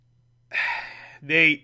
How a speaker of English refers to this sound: Why am I yawning?